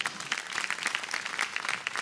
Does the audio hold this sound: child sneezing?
no